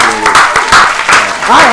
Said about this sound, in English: Clap it up.